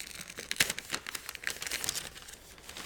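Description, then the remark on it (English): Wrapping paper around a box crinkles and rustles as it is unwrapped close to the microphone, with sharp bursts of crackling and tearing-like crunches over a few seconds and no one talking. “I'm going to try not to kill y'all's ears by undoing this paper too crazy close to the microphone.”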